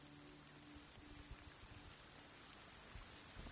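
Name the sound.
rain falling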